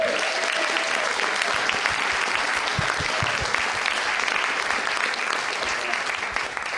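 A crowd applauds loudly and steadily, dense overlapping clapping filling the space for several seconds without letting up, with no voices standing out.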